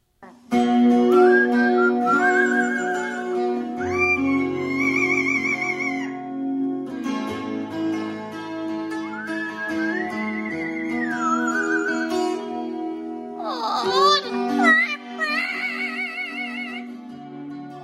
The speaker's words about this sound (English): This parrot has a right to sing the blues. I thought that was awesome. Oh my God, it's so cute too.